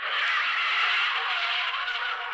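A car tire squeal: a harsh, sustained high-pitched screech that holds steady and loud for a couple of seconds, with no voices.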